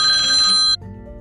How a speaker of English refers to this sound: Ah, the familiar sound of the old phone ringing. One of the downfalls of doing the Truth Hurts program whilst driving and using the cell phone as my recording studio. My apologies for the loud ringing sound if you are hearing that on your end.